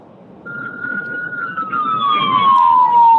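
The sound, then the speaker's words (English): A police siren wails in one long, slowly falling tone over a low rumble of background noise, growing louder. “Imagine he's calling while he's in a hot pursuit chase.”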